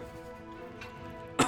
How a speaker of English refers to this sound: I'm bent over. You see me cough off some blood.